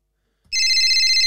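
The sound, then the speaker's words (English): A telephone rings with a bright, steady electronic warble that starts abruptly after a brief silence and continues loud, with no voices present. “All right, it's ringing.”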